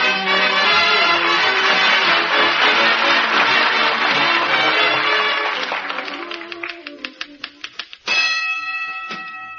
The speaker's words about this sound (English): Awful loud bell on that typewriter, dearie. Yeah. It used to belong to a sports writer. He used it at a prize fight.